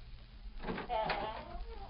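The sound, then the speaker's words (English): An outside door swings shut with a brief scraping creak, then settles; one moderately loud closing movement against a quiet, faint hum. “Quick, Tonto. Close the outside door.”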